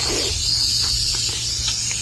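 A pregnant female rattlesnake strikes, giving a steady, continuous dry buzzing hiss, fairly loud, holding unbroken for the whole moment with a low hum underneath and no voices.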